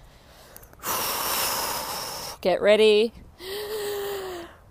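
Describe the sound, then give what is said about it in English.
A long, loud, rushing breath, followed by a brief spoken phrase and then another drawn-out, slightly voiced exhale: long, deep breathing during recovery between exercise intervals. “Long, deep breathing. Use this recovery.”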